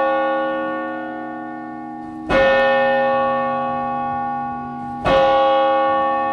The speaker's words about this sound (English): Daniel Albert rings this church bell at 7 p.m. every Friday to signal the doors are open